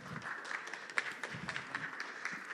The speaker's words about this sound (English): Lovely golf clap, everybody.